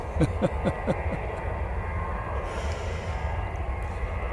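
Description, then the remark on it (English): A jet taking off: a steady, broad jet-engine roar with a deep rumbling low end holds for several seconds, with a few quick rhythmic taps at the start and no talking. “And there's a jet taking off. Listen to that for a moment”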